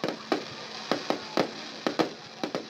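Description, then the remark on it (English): Fireworks going off to celebrate a 20-year anniversary, in a rapid, uneven string of sharp bangs, about a dozen pops over a few seconds, with a hissy background between blasts. “And then we just laughed about it because it was like, it's not gunfire, it's just fireworks to celebrate the 20 years.”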